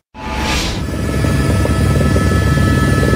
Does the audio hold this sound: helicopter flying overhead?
yes